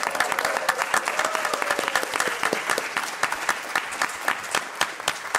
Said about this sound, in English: Look at your little fella, look, going, bless him. Slowly but surely. Let's give BB-8 a round of applause.